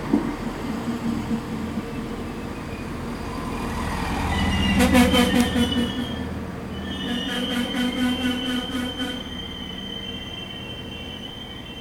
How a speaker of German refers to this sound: Am nächsten Morgen gibt es auf einmal einen Ruck. Dann pfeift die Lokomotive ganz laut. Der Zug bremst plötzlich ab, bis er ganz still steht.